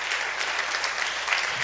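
A church audience claps hands together for the audience, elders, pastors and staff, a dense, steady wash of applause that holds at an even, fairly loud level throughout, with no voices standing out.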